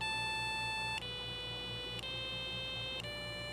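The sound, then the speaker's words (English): A Circuit Playground board (Bluefruit or Express) running CircuitPython plays little tones through its small speaker after a reset: steady, buzzy beeps of about a second each, an A then a B and so on, shifting in pitch with a faint click at each change, over a low steady hum. “I'm gonna reset and you're gonna hear it play some little tones.”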